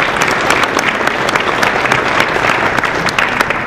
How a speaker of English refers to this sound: So I want to thank you so much for investing in that. I want you guys to give yourselves a round of applause for that. We're just so thankful.